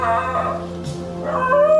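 A dog howls in drawn-out, wavering tones, a sustained cry that rises and falls across about two seconds, fairly loud over a steady background hum.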